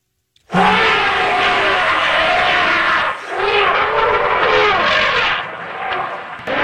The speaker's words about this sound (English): That is an elephant. Is that an elephant heat or what's it doing?